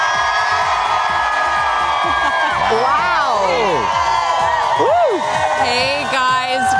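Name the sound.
crowd cheering outdoors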